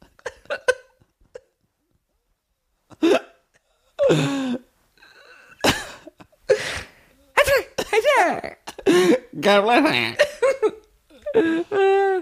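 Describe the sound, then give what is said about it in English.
A dog named Kanye sneezes repeatedly, short sharp nasal bursts scattered over several seconds with snorty huffs and throaty noises between them, fairly loud against a quiet background. “Kanye's sneezing.”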